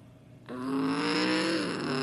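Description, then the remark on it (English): A pace truck's engine drones steadily as it drives down pit road before a race restart, a low humming roar that swells in after a brief quiet moment and holds loud to the end, with no one talking. “Pace truck is working his way on back down pit road.”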